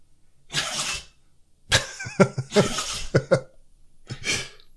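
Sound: dog sneezing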